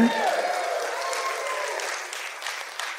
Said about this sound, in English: That's right. You can applaud that. That's fine.